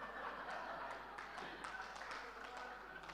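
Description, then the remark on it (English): Soft, irregular hand claps tap out a loose rhythm about once or twice a second, fairly faint and set against a low background murmur of voices. “Why are you clapping?”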